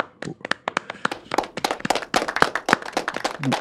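A short round of applause from a small group: sharp, crisp hand claps that start sparse and quickly thicken into a dense, uneven patter of overlapping claps, with no voices.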